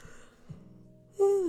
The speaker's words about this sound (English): Okay, sorry, yawning.